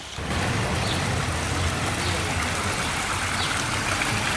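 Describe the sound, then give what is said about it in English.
Steady, continuous running water in a town's old municipal laundry built in 1905, flowing in three large rectangular stone basins about 10 metres long each, an even rushing and trickling that holds at constant loudness throughout with no breaks. “And as I'm sure you can hear, the lovely relaxing sound of water.”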